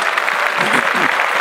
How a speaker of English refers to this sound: So we have another black mogul billionaire. Another mogul black billionaire. Tyler Perry. That's right. Clap it up.